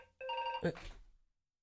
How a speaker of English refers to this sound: Oh, now look, your phone's going. It's just endless today.